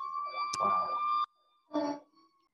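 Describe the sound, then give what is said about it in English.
A fire truck siren sounds as a loud, steady high-pitched wail, breaks off, then returns in one short blast before fading. No one speaks. “Again, sorry about the fire truck.”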